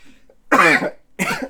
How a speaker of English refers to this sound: Leave all those coughs in. Sorry. You want to take a drink of water.